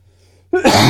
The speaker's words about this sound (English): we'll have to edit out that cough, by the way.